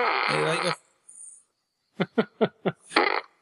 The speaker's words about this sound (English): That's the Despicable Me 2 fart blaster.